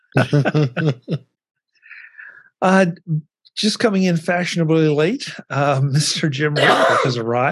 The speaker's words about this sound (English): Gesundheit. That's quite the entrance.